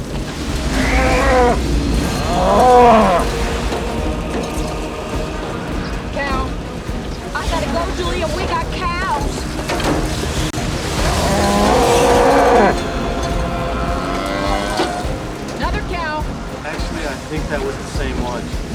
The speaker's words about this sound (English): Well, it's the tornado siren still in the background.